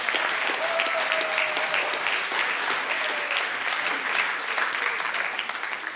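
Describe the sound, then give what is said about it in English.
Steady, dense applause from an audience for the band fills the whole six seconds, a broad hiss of many hands clapping at an even level, with a faint whistle-like tone briefly cutting through. “And while we're in the mood for clapping, to the band who are now sitting over here.”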